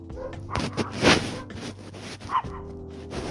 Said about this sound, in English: Sorry, these dogs are way louder than I thought they'd be.